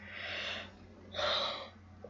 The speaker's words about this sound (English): I'm not even really tired. Yes, I yawned. But I'm not really tired. Or bored.